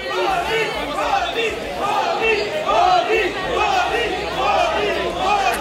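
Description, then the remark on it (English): A large crowd chants the name "Modi" over and over as Indian Prime Minister Narendra Modi is greeted after touching down in Sydney, loud and continuous, with many voices blending into a roaring, rhythmic swell that rises and falls throughout. “You could probably hear there the crowds chanting, Modi, Modi, Modi.”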